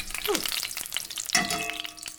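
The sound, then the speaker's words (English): Grease sizzles and crackles steadily in a frying pan, a dense hiss with popping bits, broken by a couple of brief metallic scrapes or clinks. No one speaks. “Now, this is going to generate a lot of grease.”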